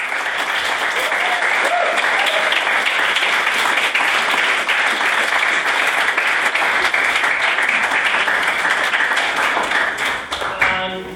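A crowd claps steadily for about ten seconds after a maiden speech, a dense, even wash of applause that holds at full strength before tapering off at the end.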